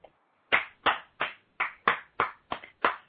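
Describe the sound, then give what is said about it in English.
One person claps their hands eight times in a steady, even rhythm, each clap sharp and fairly loud, with no talking over it. “The one-man clap.”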